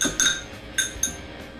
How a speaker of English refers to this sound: And then the egg. Give it a little mix before you add it. It'll help mix easier.